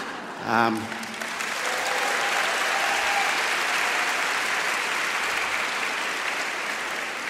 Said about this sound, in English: Rule one of chairing an event like this is don't milk the applause, and I've broken it already. Welcome to this Festival of Dangerous Ideas event, Break a Rule a Day with Lionel Shriver.